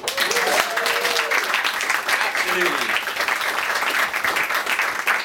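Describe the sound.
Sustained crowd applause, a dense, steady roar of many hands clapping at an even loudness for several seconds, with a few voices calling out briefly over it.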